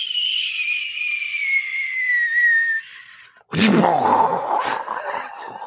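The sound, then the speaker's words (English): A falling whistle glides steadily downward in pitch for about three seconds, breaks off briefly, then gives way to a loud, rumbling explosion that crackles and fades out, a cartoon-style bomb drop effect. “I don't know what button he hit to get that sound effect, but I did it.”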